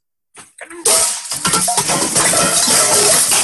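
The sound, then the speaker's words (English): A few sharp metallic knocks as a phone hits a pot, then a sudden loud cascade of pots falling off a hanging rack, crashing down together in a continuous, ringing clatter that rattles on without letup, harsh. “He hits a pot with the phone and then all of the rest of the pots fall after.”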